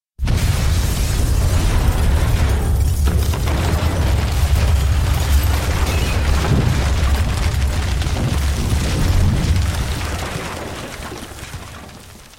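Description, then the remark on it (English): Vale's boat, the Immortal, explodes at a dock with a rising fireball: a massive deep, roaring boom, followed by a long rumbling blast and crackling debris that slowly fades over about twelve seconds. No voices are present. “I saw the fireball rise out of Vale's boat.”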